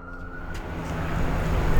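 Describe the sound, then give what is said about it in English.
A police car speeds around Grand Circus Park in Detroit to reach a person being arrested, its engine and road noise swelling louder over a couple of seconds, with a brief high tone early on and no voices. “That cop car flew around to get this person, so I don't know what happened, but there's another arrest here in the park.”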